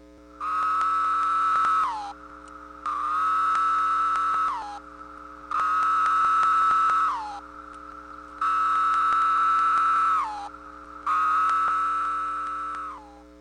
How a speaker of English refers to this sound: Linnaeus 17-year cicada, Magis cicada septem decem. Listen for the female's wing flicks in response to the male's song. This is followed by courtship song.